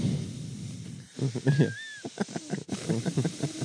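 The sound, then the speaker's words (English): Heavy breathing through the nose, a run of rough, hissing puffs in an uneven rhythm, with a brief thin whistle partway through. No one speaks. “This guy's breathing heavily through his nose, thinking about boys' holes.”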